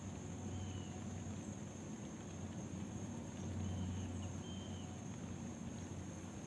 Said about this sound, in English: you can hear the rain pick up again.